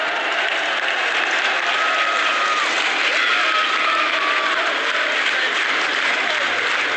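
football crowd noise

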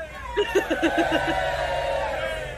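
crowd cheering

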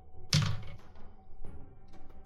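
dice being rolled

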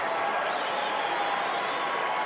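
arena crowd cheering

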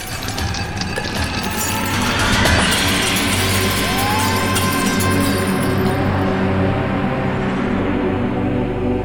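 window glass shattering

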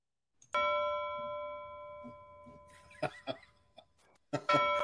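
doorbell ringing

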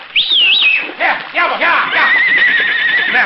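horse whinnying

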